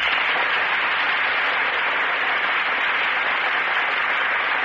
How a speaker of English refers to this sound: The audience breaks into applause as Joan Blondell and Melvin Douglas enter our Gulf Theater stage.